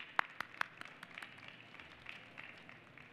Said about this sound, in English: Please give her a round of applause and let's get started.